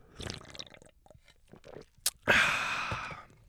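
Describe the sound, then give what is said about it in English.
Wet mouth clicks and small squishy sounds, then a sharp metallic tap and a loud, sustained slurping sip from a can of Twisted Tea hard iced tea with fizzy, hissing liquid. No talking. “Okay, let me take a sip of my twisted tea.”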